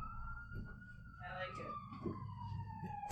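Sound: ambulance siren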